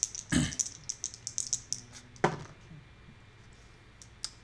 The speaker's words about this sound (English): Let me roll the table to see, to determine your fate. Your fate is now lies in the die. Or dice. I'm rolling two dice.